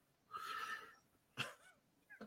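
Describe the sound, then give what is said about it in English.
A female pitbull puppy named Sally lets out a short, reedy whine, then a brief yelp after a pause, and a sharper, louder yip right at the end. There's no talking. “It's my pitbull.”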